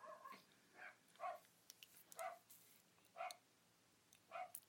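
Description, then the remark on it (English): Dogs bark in short, high yaps, about five of them spaced roughly a second apart, fairly quiet, with no one talking. “Say hello to my dogs.”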